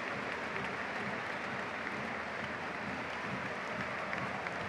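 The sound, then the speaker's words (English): A large stadium crowd of City fans applauds steadily as McLean is substituted off. A dense wash of clapping holds an even, fairly loud level throughout, with no voices standing out above it. “He got a good reception from the City fans”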